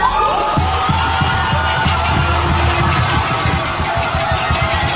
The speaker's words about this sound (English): There was a crowd of thousands outside the governor's mansion in Old San Juan that erupted into cheers and dancing.